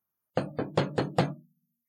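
Five quick, firm knocks on a door in a steady rhythm, clear, followed by silence. No one speaks.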